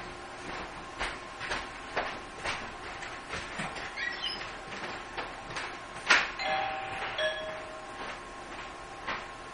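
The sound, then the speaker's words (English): A doorbell chimes once, a short ringing tone fading quickly, set against steady background hum and scattered clicks and knocks. No one speaks. “to take a few seconds break, folks, the door.”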